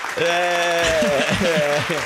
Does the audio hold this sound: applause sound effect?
yes